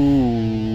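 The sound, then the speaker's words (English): A deep foghorn blast sounds alone, a loud, steady, buzzy low tone that dips slightly in pitch at the start and then holds unbroken for under a second. “Ooh. Foghorns.”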